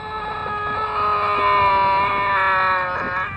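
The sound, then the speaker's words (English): A single strange, sustained scream rings out loud, holding a steady, buzzy pitch for a few seconds before wavering slightly near the end, with no talking around it. “Here's a weird scream.”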